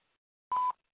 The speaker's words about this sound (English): At the beep, please leave a message.